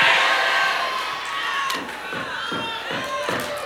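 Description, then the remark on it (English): A crowd of women scream and cheer together in a loud, sustained, high-pitched roar, with a few dull thumps mixed into the noise. “But now the ladies. Somebody scream, fishes!”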